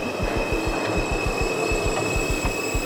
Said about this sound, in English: There's another train coming, and like even the thought of getting on it, my legs are feeling a little weak. I can see the light.